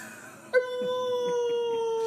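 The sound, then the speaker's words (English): A person imitates a dog howling, letting out a single long, steady wailing note that begins abruptly and holds for over a second, fairly loud. “And sometimes on a dark night, when the moon is full, I howl.”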